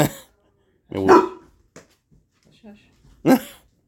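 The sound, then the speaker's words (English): Dogs bark at people walking by in a few sharp, loud bursts, spaced a second or two apart, with faint softer noises in the gaps between barks. “So we're having a dog issue. We have people walking by, and the dogs are overprotective.”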